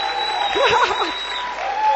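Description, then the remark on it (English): An audience claps for the Lord, steadily for about two seconds, a dense, even wash of many hands, with a short vocal cheer rising briefly through the applause near the middle. “Now give the Lord a clap, make the devil angry and the Lord happy.”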